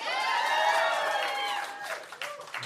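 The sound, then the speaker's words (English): A crowd bursts into applause with loud whoops and cheers, a dense wash of clapping under high, sustained shouting voices that begins to fade near the end. “Show of applause.”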